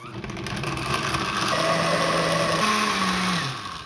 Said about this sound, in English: I love cilantro, and cilantro is what makes salsa verde, in my opinion. So I'm going to use the blender now.